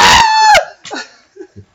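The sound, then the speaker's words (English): A person lets out a loud, shrill scream in fright after being grabbed, holding for about half a second before cracking downward, followed by a few faint, brief vocal murmurs. “She reaches and grabs you. Yeah. I scream.”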